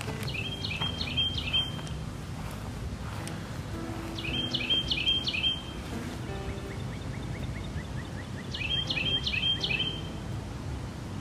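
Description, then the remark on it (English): A bird in a backyard repeats a quick burst of high, clipped chirps three times, about every four seconds, with fainter trills between, over a steady low outdoor rumble. No one speaks. “We were on our way to the backyard when this guy started chirping.”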